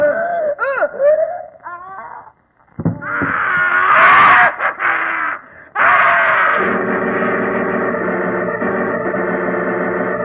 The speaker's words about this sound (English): Scream? Yes, I was in bed when it came. Positively ghastly, too. Seemed to come from Uncle Andrew's study.